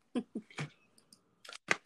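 Crisp card handling: a few quick papery taps and slaps, then a bright shuffling rustle and a sharp snap as a deck is cut, with no talking.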